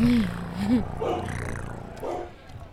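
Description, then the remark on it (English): A person's voice imitates a dog with two short woofs in quick succession, followed by quieter murmuring vocal sounds. “I said it, it said woof, woof.”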